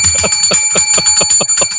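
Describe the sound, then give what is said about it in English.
A bright science bell sound effect rings rapidly about eight times in an even, quick rhythm, loud, like a bicycle-style bell, with no voices. “You want to ring that science bell for me?”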